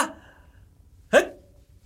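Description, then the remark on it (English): A tiny, high-pitched sneeze bursts out once, short and squeaky like a mouse, after a brief trailing vocal sound at the start; otherwise quiet. “Because that was a terrible like a mouse. Sneeze.”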